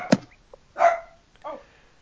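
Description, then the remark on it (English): A dog lets out one sharp bark, then a drawn-out whiny yelp and a shorter, softer whimper, with brief quiet gaps between them and no talking. “Who's a good dog?”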